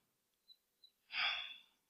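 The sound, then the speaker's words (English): One forceful sneeze bursts out and trails off over about half a second, preceded by two faint, quick catches of breath. No one speaks. “God bless you.”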